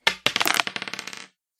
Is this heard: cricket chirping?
no